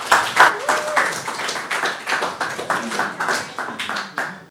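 An audience applauds, many hands clapping in a dense, rapid, crackling patter that holds steady for several seconds with slight swells and fades, with no voices over it.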